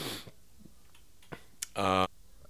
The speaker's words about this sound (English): It almost sounded like he was getting choked up there. I know he was probably just clearing his throat or whatever